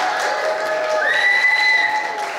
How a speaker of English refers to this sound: Give her a round of applause, you guys.